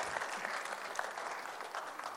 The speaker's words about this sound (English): Thank you for helping me this morning. Thank you. Why don't we give an applause to the volunteers? Thank you.